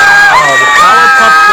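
A large crowd of girls screams for a band, many shrill voices overlapping into a loud, sustained wall of shrieking with no pauses.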